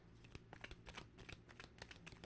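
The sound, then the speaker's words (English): A deck of crystal and gemstone oracle cards being shuffled, a quick run of crisp riffling snaps and soft slaps repeating rapidly for a couple of seconds, with no voices. “So let's see, let's get a crystal slash gemstone card here for you guys, for you Leos out there. Let's do another shuffle.”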